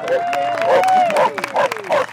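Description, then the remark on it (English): A sheepdog named Clem lets out a rapid string of sharp barks, roughly six in two seconds, over a busy background of crowd noise. “Okay, that's Clem, and her owner says barking is how she claps.”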